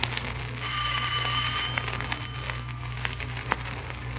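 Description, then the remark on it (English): A doorbell at a dealer's house rings in a single sustained, bright trill lasting about a second, followed by a few sharp clicks over a steady low hum. No one speaks. “Ring the bell.”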